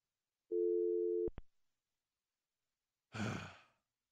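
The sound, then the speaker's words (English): A steady telephone dial tone hums for under a second before being cut off by a couple of sharp clicks as a phone call to a guest fails; moments later, someone lets out a loud, exasperated sigh. “We're trying to get a special guest on the phone.”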